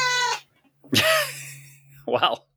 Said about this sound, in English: There's some angry cat going on right there. I know. It's vicious.